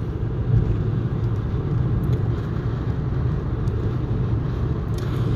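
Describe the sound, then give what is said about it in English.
A steady, low engine and road rumble from a car being driven, recorded on the driver's phone, continuous and fairly loud for the whole stretch with no talking, just an even hum of tires and motor. “I just swerved in front of a cop.”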